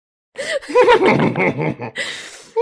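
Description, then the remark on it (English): People each make their best horse noise, voices imitating a horse's whinny with wavering, trilling pitch, blending into laughter; the loud mimicry runs for a couple of seconds, followed by a brief pause and another whinnying cry. “Everyone make your best horse noise.”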